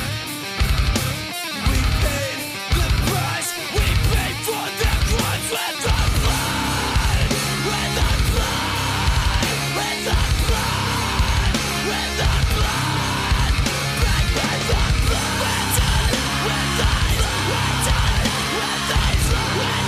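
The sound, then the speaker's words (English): Loud, dense post-hardcore rock song plays throughout, with heavy drums, distorted guitars and strained, shouted and screamed vocals riding on top; after a choppy stop-start opening it settles into a steady, driving wall of sound. “Let's go to track 6, ….”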